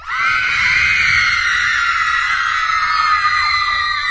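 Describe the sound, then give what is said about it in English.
A loud, sustained wall of high-pitched shrieking from many teenage girls, played from a screaming machine that replaces a teenage audience, like a frenzied concert crowd, holding steady without a break for several seconds with no talking over it. “I got a screaming machine right here. Yeah? It replaces a teenage audience.”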